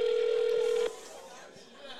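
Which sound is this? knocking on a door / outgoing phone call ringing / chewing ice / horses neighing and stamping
outgoing phone call ringing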